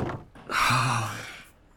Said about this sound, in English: You see that there's a pile of 2x4s set up and a few sheets of plywood. And from the angle, you see another plywood piece get dropped.